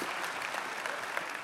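An audience claps in a steady, dense round of applause, a bright crackling wash of many hands with no pauses, holding an even loudness throughout.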